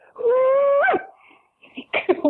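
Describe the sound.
A person performs a loud Australian cooee call: one long, steady held note that sweeps sharply upward at the end. A brief burst of talk or laughter follows.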